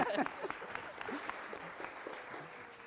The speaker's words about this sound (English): Give him a round of applause, ladies and gentlemen.